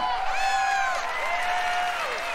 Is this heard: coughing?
no